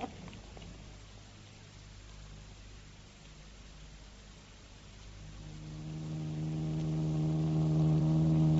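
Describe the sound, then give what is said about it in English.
Paul Temple's stolen car hums steadily at first, then revs up and accelerates, its pitch rising and growing louder toward the end as the vehicle picks up speed. “Yeah, she goes like a bird.”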